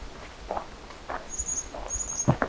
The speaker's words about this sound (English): Some more black-capped chickadees.